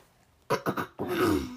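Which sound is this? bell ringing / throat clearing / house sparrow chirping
throat clearing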